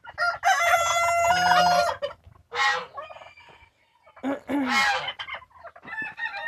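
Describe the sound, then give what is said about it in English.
A young rooster crows loudly, a long strained call lasting about two seconds, followed by shorter squawking crows and clucks with brief pauses between them. “Got me heavily peacocks, young peacocks, young cocks, peacocks.”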